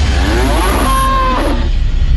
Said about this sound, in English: That's a pretty good cow. Not a super cow, a regular cow